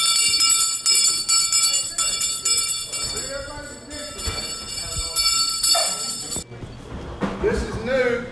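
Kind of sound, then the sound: signal or alarm, church bell ringing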